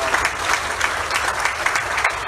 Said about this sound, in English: So can you join me once again? We're just going to give them a big round of applause. So welcome to the room.